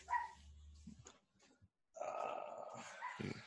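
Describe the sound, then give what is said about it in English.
A dog barks in two loud, rough bursts with a growly edge, separated by a brief quieter pause. No one speaks. “Oh, something at the dog.”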